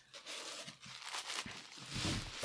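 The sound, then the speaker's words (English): Close, continuous crinkling and rustling of tissue paper being pulled apart and handled as a fairly light gift box filled with it is opened, with crisp bursts of noise rising toward the end. “I opened it, and it's filled with tissue paper.”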